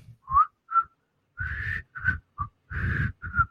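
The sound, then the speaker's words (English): Breathy, wavering whistling of a TV theme tune by a woman, slightly off-key: a few short notes, then longer airy phrases with audible breath noise, with no talking. “And you know, the worst thing is she can't whistle.”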